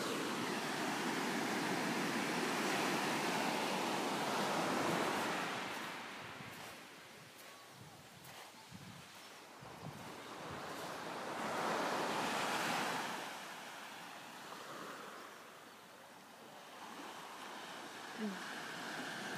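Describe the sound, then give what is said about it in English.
Waves wash onto the shore in broad, hissing surges that swell and recede, loudest around the start and again midway, with gusts of wind noise and no talking. “I hope you can hear me because I'm stood in front of the sea.”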